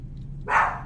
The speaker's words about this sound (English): If my dog will stop barking, my God, I don't know what's gotten into her.